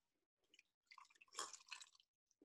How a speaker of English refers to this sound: I'm going to pour a little glass of it. Like I said, it's got a nice cork on it.